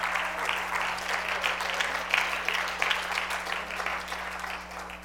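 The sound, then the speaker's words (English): An audience at an apostolic Pentecostal church sermon claps their hands in a sustained burst of applause, a dense, steady patter of many hands at an even loudness for the full five seconds, with a low constant hum underneath. “Now, at least I ought to get a good apostolic Pentecostal amen and a hand clap in there somewhere.”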